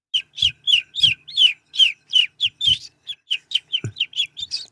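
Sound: person imitating bird chirping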